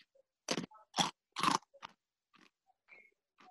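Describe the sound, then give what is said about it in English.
Three loud crunches in quick succession as something crisp is bitten, followed by softer chewing crackles and small mouth sounds, with no talking. “Crunch it.”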